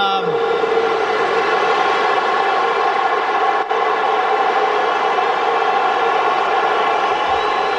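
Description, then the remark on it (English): A huge stadium crowd of about 40,000 Essendon fans boos at the MCG during an AFL match, in one sustained, loud, droning roar that holds steady for about eight seconds with no break. “The boos of about 40,000 Essendon fans in between.”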